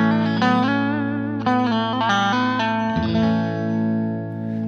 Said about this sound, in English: Then out of the delay, I plug right into a Roland Cube 60 combo amp. It's nice and clear, and all our distortion is going to come from the Metal Zone. Here's the Cube 60 with the effects off, so you can have a reference point here.